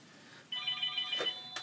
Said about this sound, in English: Uh-oh. The phone! The phone's ringing!